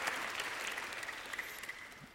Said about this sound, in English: If you're going to clap, let's clap. Amen.